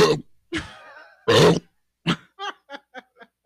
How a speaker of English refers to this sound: Oh, God, that didn't sound good. No, it was just a really big burp.